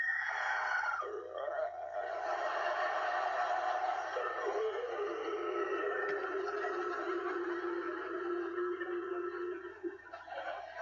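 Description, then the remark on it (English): A voice imitates a zombie for a Haunted Halloween event at Mighty Mountain with one long, raspy groan that runs unbroken for about ten seconds, its low pitch wavering and sliding gradually downward, steady in loudness with no speech. “What? That's a zombie.”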